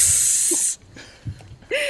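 A loud, bright sizzling hiss fills the first three-quarters of a second, cuts off abruptly, then a brief quieter pause with faint tones before the hiss surges back at the end.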